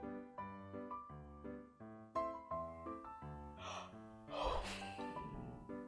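A person yawns loudly, a long drawn-out voiced groan that wavers in pitch, broken by breathy gasps of air near the end.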